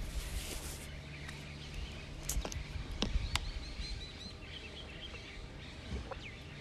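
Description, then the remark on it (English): Birds chirp softly in the background, with scattered light tweets and short calls over a steady outdoor background hiss, plus a few sharp clicks. No one speaks. “There are birds in the background”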